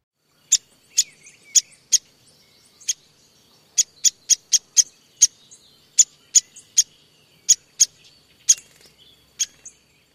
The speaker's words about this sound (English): Hairy woodpeckers also have a sharp peak that is similar to downy woodpecker. Here's the downy.